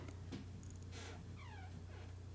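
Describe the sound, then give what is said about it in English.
A door creaks slowly open as a cat pushes it to let himself out, a short, faint descending squeak with a few soft rustles and bumps around it, all over a steady low hum. “That was creepy, but the cat just opened the door to let himself out.”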